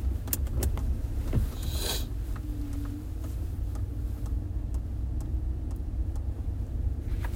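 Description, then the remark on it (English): Steady low rumble of road noise from inside a truck driving at night in light fog, just started and moving for the first time, continuous and fairly loud, with scattered light clicks and rattles over it and no one speaking. “you're gonna hear road noise like you just did with my brakes”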